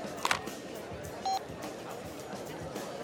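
A single short cell phone keypad tone beeps clearly, preceded by a faint brief click, all over a steady murmur of background noise and chatter in a bar.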